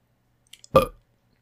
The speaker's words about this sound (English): Oh, fuck, I'm gonna burp.